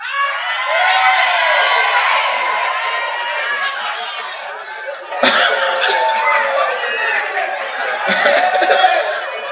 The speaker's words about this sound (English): Somebody shouting here.